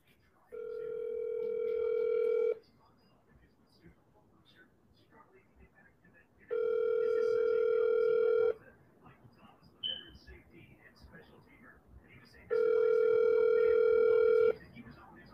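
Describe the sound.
A phone ringback tone plays over a speakerphone, three long steady buzzing rings about two seconds each with quiet gaps between, fairly loud and clear with faint background rustle.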